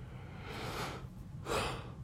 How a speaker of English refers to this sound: God damn it. It's gonna be such a boring podcast with me yawning, because I don't edit these things.